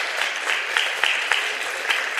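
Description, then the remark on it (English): An audience claps steadily for a group of kids, a dense wash of many hands with a few sharper individual claps popping out irregularly. The applause stays fairly even and moderately loud throughout, with no voices. “Let's give these kids a little round of applause, folks, for doing good job, guys.”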